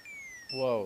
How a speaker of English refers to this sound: Whoa. I had to stop the alarm.